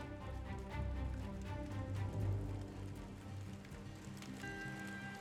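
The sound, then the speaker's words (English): A campfire at a campsite crackles steadily, with irregular small pops and snaps over a soft, continuous low rumble and faint sustained tones in the background. “As we sit on the beachside and watch the waves roll in slowly, we can hear the fire in the campsite just nearby.”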